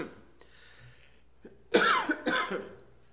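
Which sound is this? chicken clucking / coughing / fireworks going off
coughing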